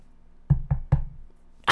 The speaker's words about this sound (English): Knock on wood.